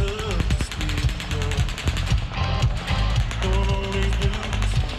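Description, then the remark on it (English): Rapid, repeated sharp cracks in a dense rhythmic burst of automatic gunfire, fired from the windows of the Mandalay Bay hotel onto the crowd below, ring out over loud live country music and crowd noise outdoors, quickly drowning out the singer's voice. “Country star … was on stage, but automatic gunfire quickly drowning out his voice”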